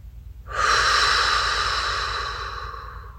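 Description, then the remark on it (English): A person imitates a dolphin's blowhole breath with one long, strong, airy exhale, faintly whistly, that starts abruptly and slowly fades over a low, steady pulsing drone. “As you exhale, mimic the dolphin's rhythmic breathing.”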